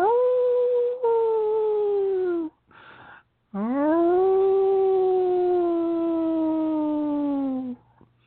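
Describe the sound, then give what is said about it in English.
Long, mournful wolf howls rise and slowly fall in pitch, one drawn-out cry followed by a brief pause and another extended howl, loud and clear with no talking. “You see the wolves in the distance. They look back at you. They acknowledge your presence. You can hear them.”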